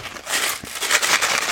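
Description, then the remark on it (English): Continuous rustling and crinkling of paper and cardboard as packets of seeds ordered from Botanical Interest, including butter gold corn and sugar baby watermelon, are shuffled around inside their box, with a few sharper crackles and no voices. “You will hear the box. You will hear the shuffling around because I'm excited to share this with you guys.”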